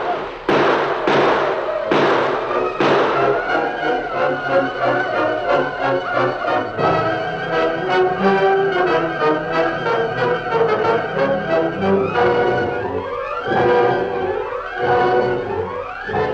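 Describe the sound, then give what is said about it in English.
Rifle gunfire in a battle at a train, with defenders firing at hundreds of attacking Indians armed with rifles: sharp, loud shots crack in quick succession at first, then blur into a dense, continuous din of noise and commotion that stays loud throughout. “Here's extra ammunition. There's hundreds of them. They have rifles.”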